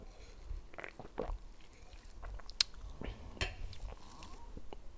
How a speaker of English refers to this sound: And also gonna take a little sip, because just, why not?